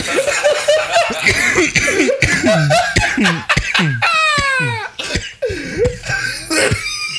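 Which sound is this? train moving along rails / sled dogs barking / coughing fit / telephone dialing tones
coughing fit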